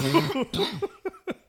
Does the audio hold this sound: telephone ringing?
no